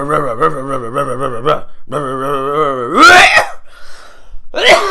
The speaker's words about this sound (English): Fucking hell, that serves me right, doesn't it? That was the heavy metal god striking me down with a cough there.